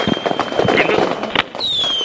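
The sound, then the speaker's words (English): Fireworks set off indoors inside a room, a loud, continuous stream of crackling pops and bursts with shrill whistling tones, one rising clearly near the end, and voices faintly underneath. “Yeah, these fireworks are crazy in here.”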